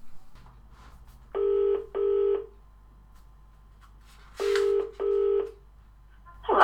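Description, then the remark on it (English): A telephone ringing tone heard down the line: two double rings, each a pair of short, steady buzzing tones, separated by a couple of seconds of quiet hum, with no talking. “I called her.”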